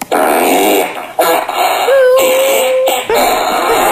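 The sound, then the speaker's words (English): A loud, drawn-out fart sound effect, a series of raspy, sputtering blasts with short breaks, ending in a sustained pitched squeal that wavers and slides before cutting off. “Let's just play with farts, okay?”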